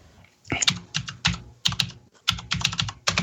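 Rapid clacking of a loud computer keyboard, keystrokes coming in quick irregular bursts with brief pauses, prominent with no one speaking.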